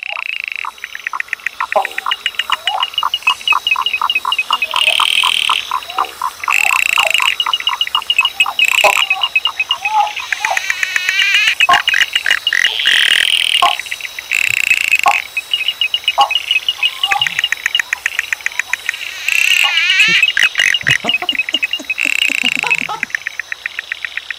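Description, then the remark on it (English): A dense chorus of Australian frogs calls nonstop, with rapid clicking, ticking and piping notes overlapping in quick rhythmic bursts, loud throughout. “Australian frogs are a lot different than Southern Illinois frogs.”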